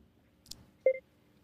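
A soft click, then a single short electronic beep as a call to a cell phone connects, fairly quiet with no one speaking.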